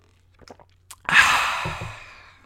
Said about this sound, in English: I'm just going to take a drink of this. I've got a drink here. You're going to hear me slurp.